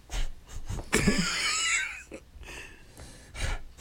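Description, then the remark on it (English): Someone sniffs a drink: a few short, breathy sniffs, then a longer, louder wheezing inhale through the nose with a whistly, high edge, followed by softer snuffling breaths. “Sniff it first.”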